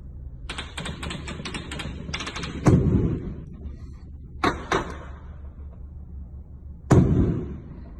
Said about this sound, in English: There's a mix of everything there, right? You heard automatic gunfire. You actually heard anti-aircraft weaponry. And those last couple of shots you heard were from a 50 caliber Barrett sniper rifle.